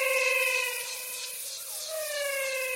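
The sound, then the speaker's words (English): A chorus of frogs sings in long, overlapping tonal notes, clear and steady with slight pitch glides, forming an eerie, whistling, siren-like drone with no voices. “I call them the singing frogs of the Pantanal.”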